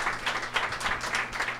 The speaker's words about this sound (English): Are you going to point out that you got a bigger applause than Taylor? Yeah, sometimes it's better to just hold it in, I feel like. It all sounds the same to me up here.